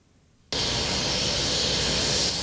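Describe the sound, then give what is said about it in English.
A helicopter's engine roar bursts in after a brief moment of near-silence, then holds as a loud, steady whine and rush with no voices. It is a late-night helicopter ride bringing defeated New York governor Mario Cuomo back to the capital city. “It was a lonely late-night helicopter ride that brought the defeated New York governor back to the capital city that he came to love.”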